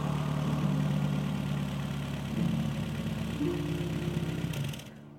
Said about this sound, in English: the rough growl of an old engine drew his attention back to the gate. Both he and the old man watched as a VW camper pulled up outside the Clever Hare public house, just across the way from the gardens.